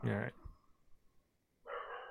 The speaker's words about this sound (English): In the meantime, you'll just have to hear my dog bark.